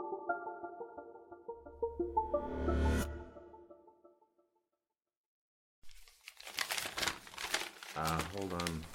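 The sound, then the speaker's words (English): After a sustained tonal passage fades into a brief silence, a piece of paper crinkles loudly as it is fetched to be shown, a dense, continuous rustling that keeps going to the end, with a short voice-like tone near the finish. “Second, I've got to get this piece of paper.”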